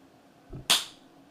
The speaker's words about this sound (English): Someone, one person do one clap like out in the middle where both can see. Okay, here we go.